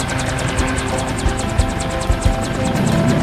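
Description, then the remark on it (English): A U.S. Army helicopter lands right in front of the group, its rotor beating in a steady rapid chop over a loud, rumbling engine drone that fills the whole clip. “Wait, does that say U.S. Army on the helicopter?”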